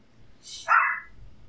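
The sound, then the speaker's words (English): A single sharp, high-pitched bark from a small eight-year-old female dog, recorded on a phone, fairly loud, rising quickly and cutting off within about half a second, with quiet low background noise around it. “It's like the smaller the dog, it's like I think she knows.”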